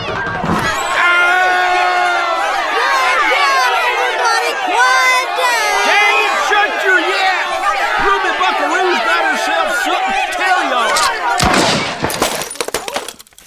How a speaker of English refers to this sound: Miss Buckaroo, that angry mob of West Buzzard's Bottom citizens is clamoring to open this locked door and take me prisoner.